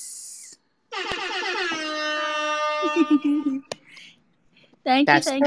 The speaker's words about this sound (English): That the air horn will repeat often in times of celebration throughout this hour. So I would get used to it now.